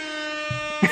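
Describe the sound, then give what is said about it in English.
A loud, steady air horn blast holds one bright, buzzy tone for the full second, with a brief burst of voice or noise breaking in near the end. “Okay, that's enough. No more air horns.”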